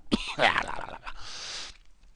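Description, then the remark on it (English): A man coughs and clears his throat: a sharp cough, a raspy, voiced hack, then a longer breathy rasp trailing off, with no words spoken. “All right, well, now that I'm coughing.”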